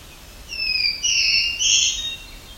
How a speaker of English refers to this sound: got both hermit thrush and black-throated blue warbler and black-throated green warbler further off.